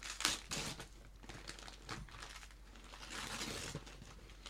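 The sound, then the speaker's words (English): Gift wrapping paper being torn open and crumpled from a heavily wrapped present, a singer's book, a steady crinkling rustle broken by a few sharper ripping bursts, with no voices. “He wrapped this like a motherfucker.”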